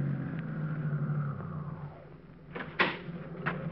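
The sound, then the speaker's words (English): A car engine idles, kept running because the car's battery is down, with a steady low rumbling hum, fading slightly before a few short clunks and rattles break in near the end. “Say, my battery's down, so just keep the motor running while I'm gone, will you?”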